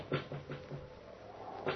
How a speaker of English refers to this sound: A knocking. Tapping.